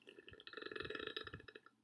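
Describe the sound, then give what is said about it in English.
A single long, throaty burp rumbles for nearly two seconds, loud and gurgling with a rough, rattling texture before trailing off. “That's a good burp, actually.”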